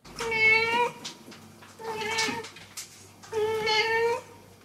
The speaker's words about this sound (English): We have two cat sounds. One is a cat who wants food, and one is a cat who is stuck behind the door. So which one is the cat who is stuck behind the door? Here is cat number one.